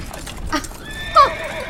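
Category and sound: animal, horse neighing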